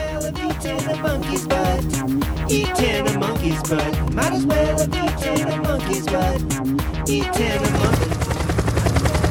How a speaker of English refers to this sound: in Sky 600, the yellow chopper over LA